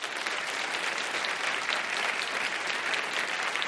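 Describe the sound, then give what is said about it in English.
An audience at an Intelligence Squared U.S. debate claps for the debaters, a steady, dense, even wash of many hands with no breaks or swells, sustained for a few seconds without any talking over it. “So we are about to begin, and I will raise my hand, and I will ask you all to applaud once again for our debaters.”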